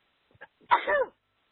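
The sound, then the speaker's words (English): A single sneeze: a couple of quick catching breaths, then one sharp, loud burst trailing into a brief voiced tail, with quiet before and after. “Excuse me. Bless you.”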